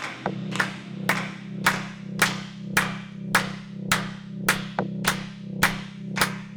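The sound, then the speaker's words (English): Hands clap in a steady, even rhythm, about a dozen sharp claps roughly twice per second, over a continuous low droning hum with no voices. “So that's the only update, keeping it short tonight, because it's time for us to clap our hands and dance our stresses away.”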